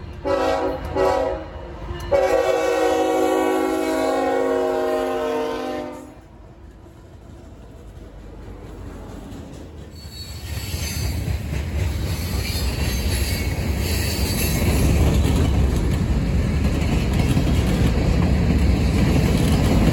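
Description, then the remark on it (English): A model train on a layout modeled on a modern-day BNSF line sounds a sustained multi-tone horn for several seconds, then rumbles and clatters along the layout, the running noise swelling louder and steadier toward the end. No one speaks. “First, we're going to go down to the Colorado Model Railroad Museum and hang out there for a little while, catching some trains.”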